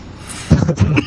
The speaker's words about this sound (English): You're still coughing.